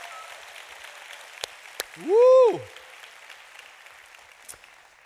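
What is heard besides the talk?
audience applause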